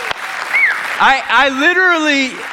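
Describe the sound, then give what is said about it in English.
An audience claps steadily throughout for the set design and programming teams who created the room's immersive set, a broad wash of applause with loud whoops and cheering voices rising above it near the middle and end. “Can you just give them another round of applause for the hard work they put into this?”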